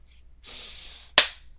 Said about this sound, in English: Did you clap? Yep. Do it again.